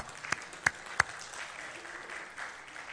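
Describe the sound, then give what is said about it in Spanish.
A few sharp, distinct claps ring out first, followed by a soft, scattered patter of applause from a small group welcoming visiting family members, fading out without anyone speaking. “¿Por qué no les damos un aplauso?”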